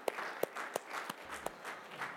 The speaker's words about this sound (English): All right, stand to your feet. Stand to your feet. Have a great day, everybody. Give the Lord a hand clap of praise for what He's done.